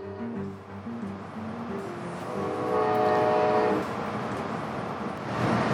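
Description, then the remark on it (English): A passenger train travelling from Michigan to Chicago, Illinois, rumbles steadily along the rails, with low droning tones and a brief horn-like harmonic wail midway, and continuous mechanical noise throughout. “Here we are on our first train ever to Chicago, Illinois.”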